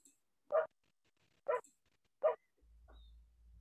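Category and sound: animal, small dog barking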